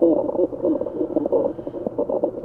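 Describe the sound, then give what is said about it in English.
A dense chorus of low, croaking spotted sea trout calls, rapid overlapping grunts and pulses in a steady stream, sounding much like a crowd of frogs, with no talking. “Some of the other ones that you've brought for us are, for instance, like the spotted sea trout.”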